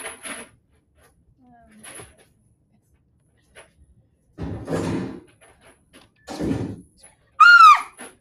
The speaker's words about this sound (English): Okay, you're supposed to scream in between. The door opens, you scream, then the door closes. Go back and do that.